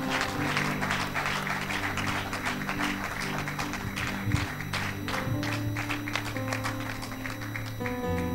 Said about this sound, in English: Clap your hands to the Lord as he comes.